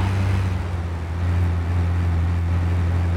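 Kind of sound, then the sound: vehicle, video game car engine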